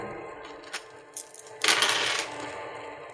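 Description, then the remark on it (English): A handful of dice is rolled onto a hard surface: a couple of quick clicks, then a bright burst of rattling and tumbling that settles over about a second, moderately loud. “Let me get all the dice.”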